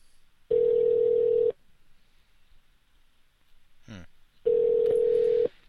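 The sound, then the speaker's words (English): An outgoing phone call rings on the line: two long, steady ringback tones about a second each, separated by a pause of roughly three seconds, with a brief click between them and no talking. “I have a feeling he's not home. And the reason I have that feeling, besides the ringing phone”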